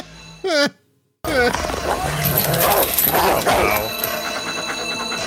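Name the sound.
dog barking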